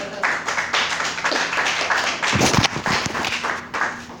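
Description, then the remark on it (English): A crowd applauds steadily, a dense, crackling wash of many hands clapping at once that holds at a fairly loud level for the whole stretch with no voices over it. “Keep those hands clapping.”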